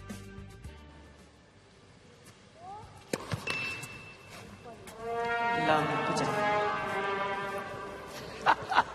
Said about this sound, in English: Somebody's got some sort of a slide trombone or something and is playing that sort of sad cartoon song after the double fault.